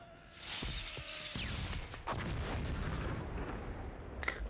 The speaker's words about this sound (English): Good lord. That was a huge explosion.